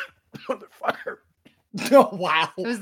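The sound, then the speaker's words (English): A man coughs a few times in short, rough bursts, then breaks into a louder stretch of hacking mixed with strained vocal sounds, fairly loud; the coughing is put down to the fireball. “I was wondering why he was coughing so much.”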